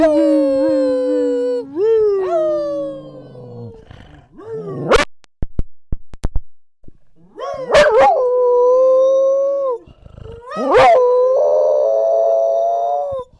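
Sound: dog howling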